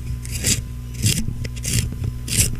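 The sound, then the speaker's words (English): A pencil being sharpened, four rhythmic scraping grinds at steady intervals over a low background hum, with no talking. “No, it's sharpening a pencil.”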